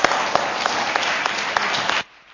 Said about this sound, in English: Can we give them a round of applause, guys?